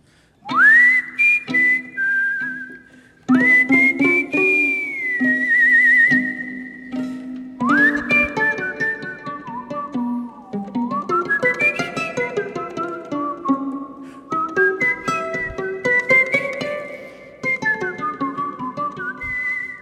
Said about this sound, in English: why don't you give us an example of …'s solo whistling?